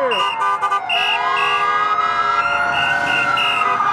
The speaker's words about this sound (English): hear the street noise on the outside, sirens going by, you get used to it